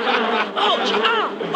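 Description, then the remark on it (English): A dense, droning buzz of many wasps from a wasp's nest fills the moment, loud, with the pitch swooping up and down as the swarm wheels around. “The wasps are turning.”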